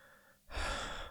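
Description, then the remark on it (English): A short pause, then one loud, breathy exhale as a man stops after rushing onward, panting hard and catching his breath. No one speaks. “He stops for a moment, panting hard.”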